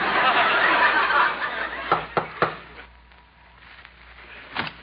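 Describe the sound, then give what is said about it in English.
A few sharp knocks on the front door of a house land in quick succession after a burst of rushing noise, followed by a quiet pause and one more faint knock at the end. “I'll knock on the door.”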